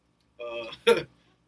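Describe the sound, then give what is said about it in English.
A short burp after taking a sip of a drink: a low voiced croak that ends in a harsher, rougher burst, all over in under a second with nothing around it. “Excuse me, I took a fucking sip of that shit. Mind my burp.”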